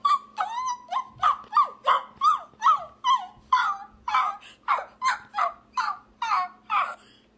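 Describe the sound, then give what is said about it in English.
A voice imitates whimpering shelter dogs, a steady series of about fourteen high, whiny yelps and whimpers, fairly loud, with no talking. “I feel like I just walked into the Humane Society. Like, these dogs have been there for 10 years, no family, no fun, no life, and that was you, and I am so impressed”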